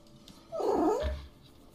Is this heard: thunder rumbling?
no